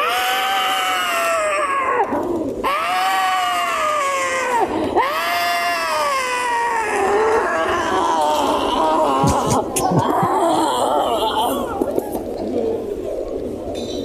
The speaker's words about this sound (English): those people that were mocking Noah for building that ark begin to scream